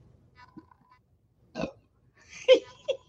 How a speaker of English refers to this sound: my burps are going to be Mo from The Simpsons